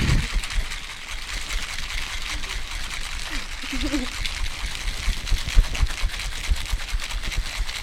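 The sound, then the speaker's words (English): Ice rattles hard inside a cocktail shaker holding a double of Bullet Rye whiskey with a splash of lemonade, in a fast, steady rhythm of sharp clattering hits that runs for several seconds over a constant noisy hiss. “It is a double with a splash of lemonade. Definitely worth it with the Bullet. And shake.”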